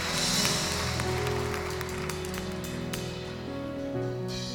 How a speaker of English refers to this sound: Can we clap our hands for everybody that received him today?